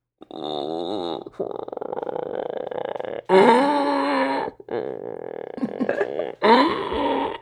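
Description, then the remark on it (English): A person imitates a howler monkey with a long series of deep, guttural, rasping roars that surge and swell in waves, growing loudest in two strong bursts, with no other talking. “You don't want to hear my howler monkey.”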